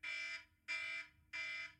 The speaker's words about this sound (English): And now the bell's going, you'd be glad to learn.